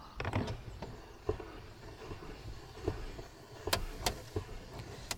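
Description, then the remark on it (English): A car's power window hums and rattles as it rolls up, a steady mechanical whir, with a few sharp clicks and thumps along the way and no talking. “Rolling it up now.”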